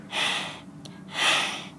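Two heavy, airy breaths, one drawn in and one pushed out, separated by a brief pause, with no talking; breathing sound effects made by school pupils for a narrated story.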